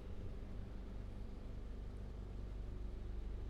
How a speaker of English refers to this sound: That sound that you guys are hearing right now from my from my fucking mic is the sound of helicopters circling my neighborhood because they're possibly looking for someone.